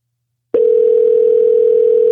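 phone call dialing tone

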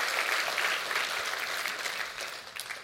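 audience clapping hands

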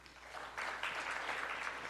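audience clapping in response

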